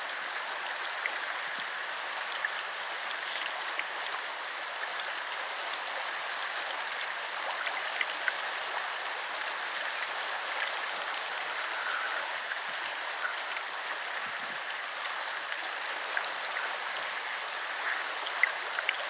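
flowing river water

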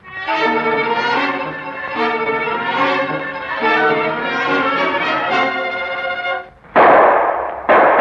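gunfire

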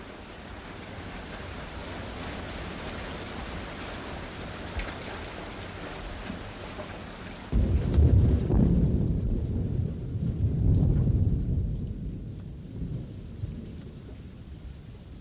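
thunder rumbling with rain

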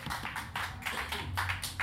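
audience round of applause

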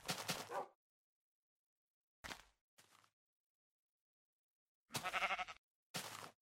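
sheep bleating

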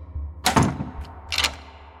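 door being closed

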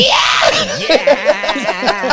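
man screaming

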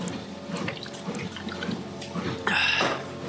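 drinking water

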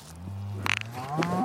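cow mooing

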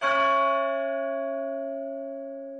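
clock bell tolling

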